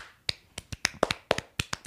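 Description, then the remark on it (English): A small burst of hand clapping: about a dozen sharp claps in an uneven rhythm, like one or two people applauding briefly, congratulating someone on making top 10 producer for November, with no talking. “Round of applause.”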